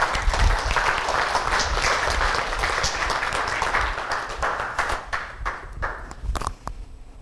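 A crowd applauds to welcome a speaker, with dense, steady clapping that holds loud for several seconds, then thins into scattered individual claps as it fades out.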